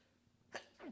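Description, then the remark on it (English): A single sharp sneeze bursts out, followed by a brief trailing exhale, with no talking around it. “Wasn't planning on that sneeze there.”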